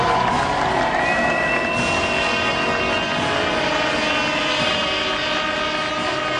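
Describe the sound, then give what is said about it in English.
A large crowd of New Zealanders cheers and roars continuously in stadium stands at the 1992 Olympics as windsurfer Barbara Kendall steps up to receive her gold medal, a loud, dense wash of noise with a few sustained whistle-like tones cutting through. “A cheering bunch of Kiwis in the stands, and a New Zealander presents a gold medal to a fellow Kiwi, Tay Wilson.”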